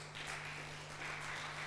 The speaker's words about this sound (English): Can we put our hands together and applaud God?